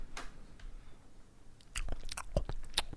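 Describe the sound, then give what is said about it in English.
Crisp crunching of Pringles potato chips being bitten and chewed, with a few sharp snaps and wet mouth sounds in an irregular rhythm, loud. “What's up with this ASMR gross chewing?”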